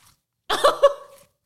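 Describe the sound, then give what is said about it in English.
Crackly crunching of icy slime: a burst of about three quick, squelchy crunches running together for under a second, with no talking. “I don't know if I'll be able to get like a good crunch.”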